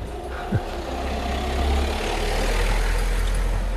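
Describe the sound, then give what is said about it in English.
Steady traffic rumbles, a continuous low drone of vehicles passing on a road with engine noise swelling slightly, plus a brief thump early on; no one speaks. “Quite a few cars.”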